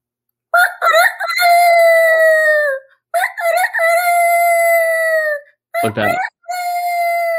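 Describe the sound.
A person's voice imitates a rooster's crow three times in a row, loud, with rising-then-sustained calls and a rough, breathy burst in the last one.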